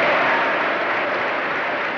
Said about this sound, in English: Please don't count the applause against the time that I have been allotted for speaking.